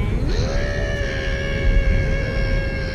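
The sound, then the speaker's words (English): A muffled, closed-mouth scream: one loud, strained vocal tone that rises sharply at the start, then holds steady and high for about three seconds, with no words. “Oh, and also, from now on, I say that nobody should be allowed to open their mouth when they're screaming on a ride. You just gotta hold it in.”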